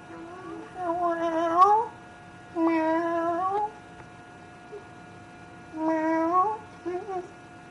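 Three drawn-out, rising meow-like calls, fairly loud with short pauses between them, most likely a human voice imitating a cat, in a listener's message voiced as a kitty cat from Minneapolis.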